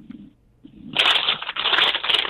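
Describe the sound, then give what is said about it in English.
Loud, crackly rustling of papers from a caller on a radio call-in phone line bursts in after a second of quiet line hum, continuing in dense crinkling handfuls with a brief pause midway, no voices present. “we can hear you rustling around.”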